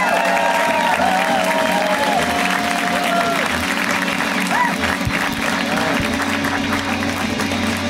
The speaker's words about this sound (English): This next comic is their first time on the show, so you know what we do when it's somebody's first time on the show. We give them a big, warm welcome to the show. So get it started right now, everybody. Clap it up. Oh, yeah.